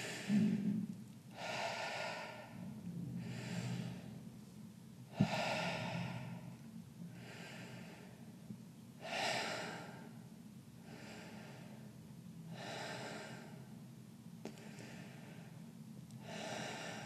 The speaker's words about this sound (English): Now all the way to the top of your chest as you're breathing in.